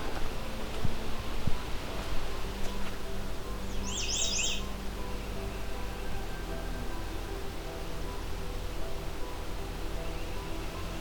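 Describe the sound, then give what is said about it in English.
A single brief, bright song phrase from a Canada Warbler rings out over a steady hiss of wind or running water in swampy woods with a trail, opening into marshland not far from a lakeshore. Nobody speaks. “So that was Canada Warbler potential territory.”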